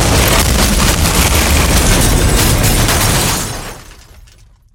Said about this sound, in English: what kind of impact a 600-kilogram bomb would have had